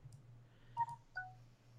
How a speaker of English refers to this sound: And someone's phone apparently agrees with me. Yeah, sorry, I forgot to put that on mute.